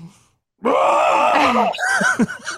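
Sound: woman screaming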